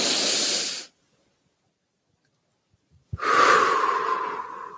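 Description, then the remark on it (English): A deep breath: a loud airy inhale, a pause of about two seconds of silence, then a long rushing exhale that slowly fades. No one speaks. “Let's take a deep breath.”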